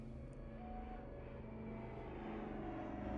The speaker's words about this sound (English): The sound of an approaching plane broke George's train of thought. He watched it come over the mountains and eventually vanish in the distance.